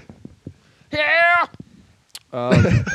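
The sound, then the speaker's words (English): A rooster crows twice, loud: a sustained strained call, a short pause broken by faint taps, then a second crow that runs to the end. “Here comes a rooster.”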